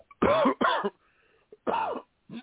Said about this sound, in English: That was the perfect time for a cough. That's why I was trying to do that before.